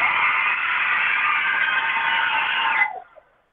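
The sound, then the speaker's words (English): A Lake Myra school crowd cheers loudly for the season three premiere of the show Carpool Casanova, a dense wall of shouting and screaming that holds steady for nearly three seconds before cutting off sharply, leaving a brief trailing yell. “Y'all make some noise!”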